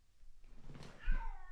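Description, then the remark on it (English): A cat lets out a single loud, drawn-out meow that rises and falls in pitch, insistent, like a yowl, with a faint background hum. “All right, I gotta go and deal with a screaming cat.”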